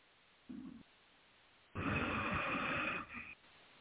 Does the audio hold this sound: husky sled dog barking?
no